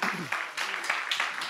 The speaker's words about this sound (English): Give God a hand clap of praise for that.